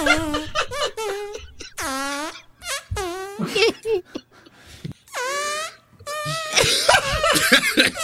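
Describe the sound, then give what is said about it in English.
A voice imitates a string of fart noises: loud, buzzy blasts with sliding pitch, some short and some drawn out, separated by brief pauses, with a few breathy bursts near the end. “So I had to put a countdown on, and that's my farewell to the fart game.”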